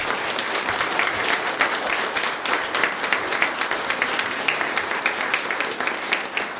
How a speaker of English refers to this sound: Round of applause for the choir.